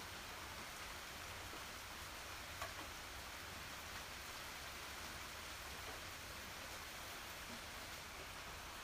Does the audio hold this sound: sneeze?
no